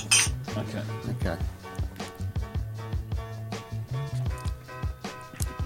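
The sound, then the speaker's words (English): Glasses of vegan Baileys clink together in a toast, a bright ringing chime near the start followed by a run of lighter taps and clatter, with voices murmuring underneath. “Should we cheers and make a noise?”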